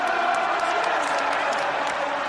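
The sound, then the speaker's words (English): A big rugby crowd in a stadium roars in a steady, dense wash of cheering and voices, loud and unbroken throughout, with a hint of collective singing blended into the noise. “Listen to the crowd, Rob.”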